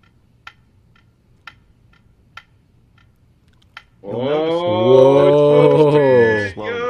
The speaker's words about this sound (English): These ticks would normally occur millions of times. That's not real. Keep watching. But we have slowed it down to show how this clock works and how the motion of it will affect the rate of ticking.